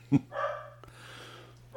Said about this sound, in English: Why are there dogs barking in the background? Oh, wait, those are your stupid fucking dogs upstairs.